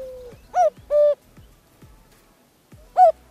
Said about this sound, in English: That's a cuckoo. Totally different bird than the other two birds. It is indeed a cuckoo.